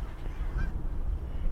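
A huge flock of Canada geese flies overhead at Wanstead Flats, honking a few faint calls carried over a steady low outdoor rumble like wind, with no one speaking.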